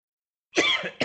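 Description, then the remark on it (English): A loud cough bursts out after a moment of silence, a harsh rasping hack followed by the start of a second cough right at the end. “Sorry for the cough.”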